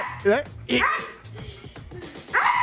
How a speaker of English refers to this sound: Every time she pulls the rope, it's like, it's like that. It's like the bulldog. I didn't know a dog could make that noise.